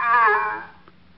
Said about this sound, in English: he kind of honks and raises a weak flipper. I better come right down. He's sinking fast.